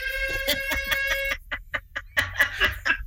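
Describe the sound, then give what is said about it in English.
A loud duck-quack sound effect: a run of nasal, buzzy quacks, followed by a quicker, choppier burst of squawking calls, heard alone with no talking. “Special word, a duck will fall from the ceiling.”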